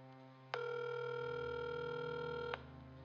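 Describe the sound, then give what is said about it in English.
A single steady electronic telephone tone from a call to the UK emergency number 999 sounds for about two seconds, bright and unbroken, then cuts off, leaving only a low background hum. No one speaks. “So a call is made to 999, which if you're unfamiliar with the UK, it's the ambulance service there like 911 is here in the States.”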